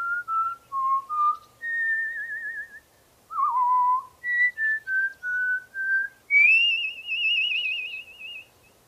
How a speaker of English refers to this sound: you said I was good at whistling and then I didn't whistle good. A whistle loud. Whistle loud, yeah.